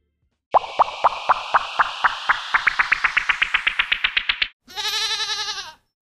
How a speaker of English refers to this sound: Well, there's the tone. You heard the goat sound, ladies and gentlemen, so that clearly means it's time to have the goat talk.